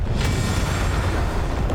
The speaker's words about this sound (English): And the towers explode up out of the ground! Majestically!